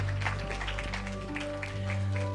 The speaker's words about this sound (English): Come on, let's give the Lord a mighty hand clap of praise.